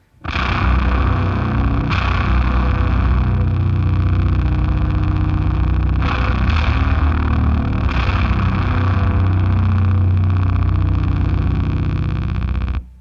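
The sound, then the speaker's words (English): A dense, sustained electric guitar drone through a filter pedal paired with an Astral Destiny or H9 reverb swells through a filter sweep, with a few soft new attacks smeared into a long, washy reverb tail that stays loud and steady before cutting off. “And I really love pairing it with the Astral Destiny or the H9 because the reverb just really draws out, you know, however I have the filter set to go up or down.”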